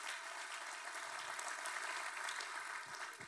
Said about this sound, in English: Our family at SCI Chester in partnership with God Behind Bars. Let's show them some love, family. Clap for them.